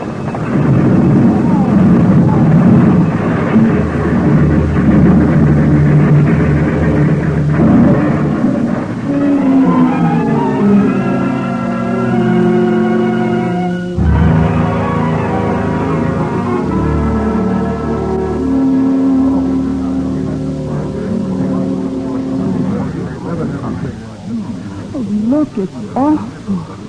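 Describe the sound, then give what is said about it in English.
A train rumbles loudly, then its brakes let out a long, shrill metallic screech that bends in pitch, broken by a sudden heavy crash and followed by more grinding squeals, as the train runs into a freight train stalled just ahead on the track in broad daylight, wrecking its front car. “Front car is wrecked. You better stay back”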